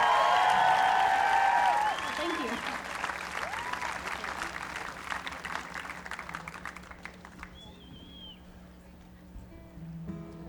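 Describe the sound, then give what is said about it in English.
An audience claps and cheers loudly after a performance of singing and fiddle playing, the applause dense at first, then thinning into scattered claps as it fades over several seconds. A voice briefly speaks near the end. “Give it up for”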